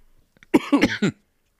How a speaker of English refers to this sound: But it made me cough. Yeah, it did. That's weird.